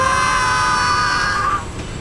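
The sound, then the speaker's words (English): A loud, sustained chorus of high-pitched screaming fills the moment for about a second and a half, then cuts off abruptly, leaving a dull rumbling background. “Your screaming may now recommence.”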